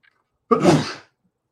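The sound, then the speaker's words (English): A single loud sneeze bursts out abruptly, a sharp onset followed by a half-second breathy spray, with silence before and after and no talking. “I was just a regular common sneeze.”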